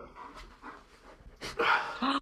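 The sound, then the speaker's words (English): A big black German Shepherd, still a puppy, pants softly in quick breathy puffs, then lets out a louder, higher whimpering whine toward the end of the short clip. “I've got a black German Shepherd.”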